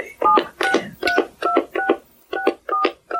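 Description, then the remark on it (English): A rapid series of telephone keypad tones as a 10-digit registered phone number is entered, about nine short beeps in a steady rhythm, each a two-pitched dual tone, clear with brief gaps between presses. “Please enter the 10-digit phone number with which you register.”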